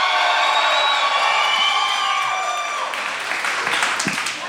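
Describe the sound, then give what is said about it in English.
At the American Music Hall, an audience asked who are fans of a singer erupts in loud, sustained cheering and clapping, with shrill whoops and high whistles riding over steady applause that holds strong for several seconds before easing slightly. “So my next question is probably going to get a wild applause.”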